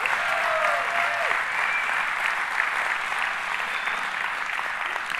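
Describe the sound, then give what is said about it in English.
A church audience bursts into sustained hand clapping, celebrating 282 people who made a decision for Jesus last year, a dense, steady wash of many hands applauding at full volume for several seconds, with a brief whistle-like tone cutting through early on. “Could you give a hand clap and no golf clap?”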